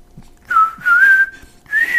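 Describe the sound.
Someone whistles a short tune, three clear sustained phrases with gently gliding pitch and brief pauses between them, fairly loud with no talking.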